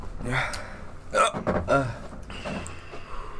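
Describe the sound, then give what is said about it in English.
A couple of short, sharp hiccups about half a second apart, clear, with faint background chatter and room noise around them. “Why did I get the hiccup so early?”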